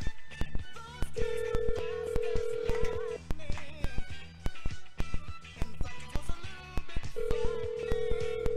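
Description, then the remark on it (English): Telephone tones on a line as a call is placed to get Kelly Shibari on the line: two long, steady electronic beeps, each lasting about two seconds, sounding over a busy, rhythmic background of music and clatter. “We're going to get Kelly Shibari here on the line.”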